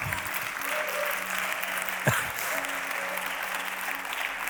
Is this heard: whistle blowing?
no